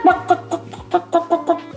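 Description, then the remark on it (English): A person imitates a chicken clucking, making a quick run of about seven short, throaty clucks in a steady rhythm, fairly loud, with no other talking. “Can you do chicken? I can.”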